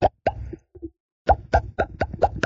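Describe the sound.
A voice imitates the glunking a bull makes toward a cow as it tries to taste her pheromones: a pair of deep, hollow throat pops, a pause, then a rapid run of five or six similar gulping glunks, fairly loud, with no talking.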